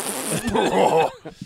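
A loud fart rasps for about a second with a wavering, buzzy pitch, then trails off into a couple of short sputters.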